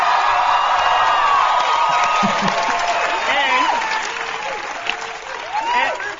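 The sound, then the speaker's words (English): A large crowd applauds steadily and loudly, with whoops and cheers rising above the clapping throughout, the noise easing slightly toward the end before swelling again. “What kind of, how arrogant are you that you naturally talk that way, that you pause after every second to try to get an applause break?”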